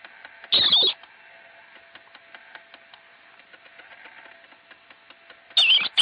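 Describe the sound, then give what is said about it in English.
Two short, shrill marmot screams, one near the start and another at the very end, separated by a quiet stretch of faint ticking and hiss. “In fact, let's listen to a marmot scream because we have a little clip.”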